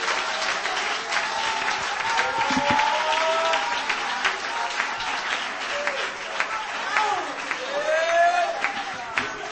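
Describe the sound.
A church crowd claps hands to the Lord during a sermon tonight, steadily and densely for several seconds, a continuous patter of many hands, while voices call out and exclaim over the applause.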